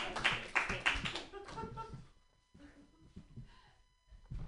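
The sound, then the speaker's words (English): A short burst of audience applause at a live stage comedy show, the audience clapping for themselves for taking part; a dense crackle of many hands clapping fades after about two seconds into quieter murmuring and a voice. “Good round of applause for yourselves for participating.”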